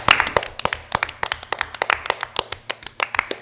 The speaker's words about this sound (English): Everybody clap, and then that way you can put in the claps after you say the gym truck.